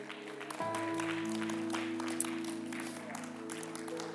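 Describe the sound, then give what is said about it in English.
An audience at a morning church service stands and claps their hands to Jesus in a dense, steady patter while sustained organ-like chords begin underneath and hold throughout; no one speaks. “Let's clap our hands one more time to Jesus.”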